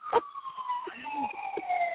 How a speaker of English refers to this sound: I can hear it now. I can hear the siren.